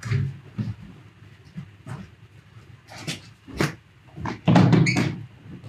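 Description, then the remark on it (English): A door is opened and shut with several sharp knocks and a louder thump near the end, locking a dog outside, while the dog whines and shuffles. “You just locked your dog out there.”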